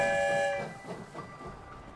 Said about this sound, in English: It's night where we've arrived, and we're in a city, rolling down the tracks while everyone sleeps.